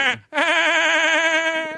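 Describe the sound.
A person mimics a sheep: a short clipped note, a brief break, then one long, loud, quavering bleat that wobbles steadily before fading slightly at the end.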